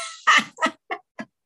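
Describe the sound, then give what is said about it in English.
A female dog about 6 or 7 years old, shut in the room with the door closed, lets out four quick, high yips, the first loudest and each following one shorter and fainter, spaced about a third of a second apart with no one talking. “And so anyway, she may be making some noise in the background because she came in with me and I closed the door.”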